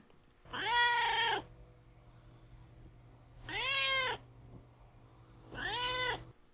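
animal, cat meowing

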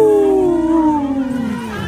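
animal, wolf howling

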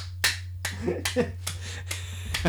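human body sound, audience clapping

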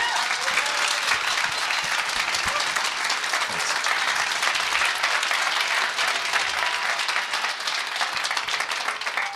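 crowd, audience applause

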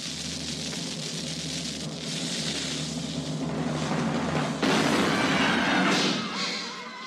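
sound effect, cannon firing sound effect

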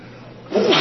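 human body sound, sneeze

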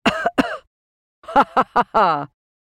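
human body sound, cough

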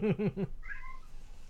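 animal, cat meowing

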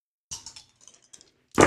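impact, dice being rolled

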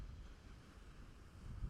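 nature, wind and surf

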